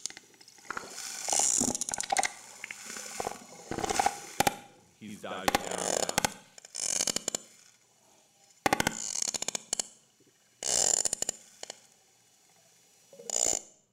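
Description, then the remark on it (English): Loud bursts of rapid echolocation clicks from a whale flipping onto its belly to examine a person in the water, buzzing like a ratchet in repeated trains, separated by short pauses, with a man briefly speaking between them. “That's where it collects those echoes underneath its jaw.”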